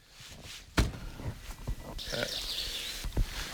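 A mōhua (yellowhead) gives a sharp, rapid contact chatter partway through, by a beech forest, over low outdoor rumble and a few heavy thumps like footsteps.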